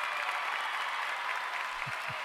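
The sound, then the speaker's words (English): A burst of canned applause from an applause button: dense, steady clapping that stays even in volume throughout, with a couple of soft low thumps near the end. “We get to get him the applause button.”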